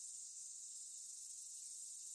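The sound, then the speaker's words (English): A continuous, high-pitched electric buzzing drone of cicadas, steady and unbroken throughout, with no voices or other sounds. “What do they sound like when they're like singing, right? Cue That's cicada kind of what they're known sound.”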